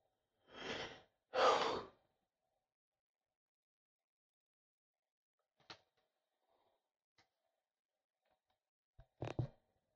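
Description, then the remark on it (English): A yawn comes in two drawn-out, breathy bursts at the start, followed by near silence broken by a few faint clicks and soft knocks. “There's a yawn in here.”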